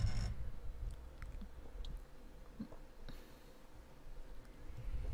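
Gulping as someone takes three big gulps of a drink, wet throat and mouth sounds repeating over a few seconds with brief pauses between swallows, no talking.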